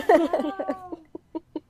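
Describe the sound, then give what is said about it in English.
A rooster crows in the background in a rising, strained burst that breaks into a few short, fading clucking notes at the end. “Okay, so now That a rooster crowing in the background?”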